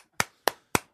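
A single person claps three times at an even, moderate pace, each sharp clap ringing briefly before fading, with no talking in between.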